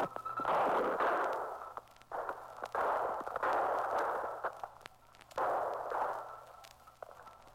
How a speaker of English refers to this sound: a field reporter literally was on the firing line with police during the capture, relaying the entire proceeding with a mobile shortwave transmitter. Listen closely now, and you'll hear the actual gunfire and the excitement that follows.